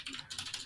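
Rapid, continuous clacking of computer keys, struck in quick succession at a steady frantic pace, fairly close but moderately quiet, with no voices present.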